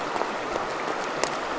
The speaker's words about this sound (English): Potomac sure is roaring today.